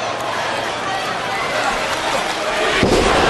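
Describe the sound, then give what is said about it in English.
A single heavy, booming thud as Chuck slams Edge onto the ring mat during a SmackDown match near the end, rising out of a steady, loud crowd roar that swells slightly afterward. “Slam by Chuck to Edge.”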